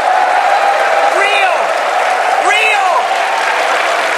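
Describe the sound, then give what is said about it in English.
The studio audience of Mad Money, including Starbucks partners who are veterans and military spouses, applauds in a steady, dense wash, broken by two loud whooping cheers that swoop up and down in pitch about a second apart. “Now, I have to tell you, some of those people are your own people, and I'm cheering, Kevin.”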